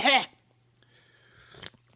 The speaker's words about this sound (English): I'm sipping on some tea right now. Forgive me for I have sipped.